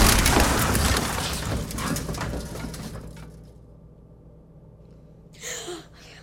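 A car slams into a tree, taking a piece out of the tree and knocking off the car's front bumper, with a loud, harsh crunching crash that rumbles and fades over a few seconds, then a short lull and a brief scraping rustle.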